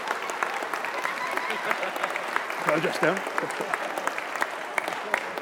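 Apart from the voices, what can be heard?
audience applause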